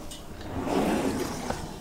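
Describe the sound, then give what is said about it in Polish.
A drawer of a cabinet holding iconography in a collections archive slides open with a low, rumbling scrape that swells for about a second, followed by a small click as it stops. The drawer holds uncatalogued collections of postcards and old photographs. “W tej szufladzie, którą teraz otwieram, są jeszcze nieskatalogowane zbiory.”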